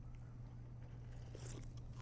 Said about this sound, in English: Drinking water through that mask is hard.